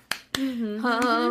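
Four sharp hand claps from a live concert audience land in a loose rhythm while a voice sings or hums a sustained melody underneath.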